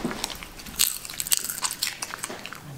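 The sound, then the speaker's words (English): A Shiba Inu dog crunches popcorn, a string of sharp, crisp bites and crackles in an uneven chewing rhythm, fairly quiet, with no one talking. “So we can enjoy some Shiba Inu. Some ASMR.”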